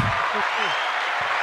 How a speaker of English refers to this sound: Let's clap it up for that.